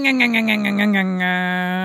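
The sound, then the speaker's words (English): A voice mimics a chainsaw pull-cord start: a quick run of about seven buzzing, sputtering pulses that settles into a steady low drone, fairly loud and alone. “trying to make cord pulling sounds.”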